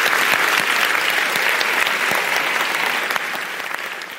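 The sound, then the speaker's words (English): A debate audience claps steadily and loudly for the panellists, a dense wash of many hands with sharp individual claps standing out, tapering slightly toward the end. “But please give a warm round of applause to all of our panellists for their fantastic contribution.”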